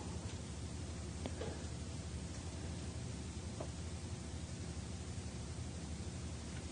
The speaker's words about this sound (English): Like me, you might hear the sound of the heating or ventilation.